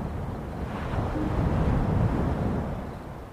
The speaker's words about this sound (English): We rowed the boat back to the dock